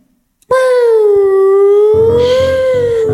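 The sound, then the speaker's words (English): A vehicle's loud whooping siren, switched on with a small button, starts abruptly and sounds one long, smooth wail that dips slightly in pitch and swells back up, with a low rumbling noise joining underneath partway through. “put on the old whoop, whoop, whoop?”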